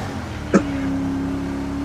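A small Issy car, being driven outright fast, has its engine droning steadily at speed, a sharp knock cutting in about halfway through before a constant humming tone holds to the end. No one speaks.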